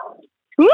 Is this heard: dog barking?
yes